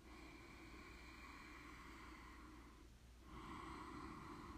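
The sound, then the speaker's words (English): Slow, deliberate breathing by a speaker: a long, airy breath lasting nearly three seconds, a brief pause, then another steady breath begins. No one speaks. “Can you hear me breathing?”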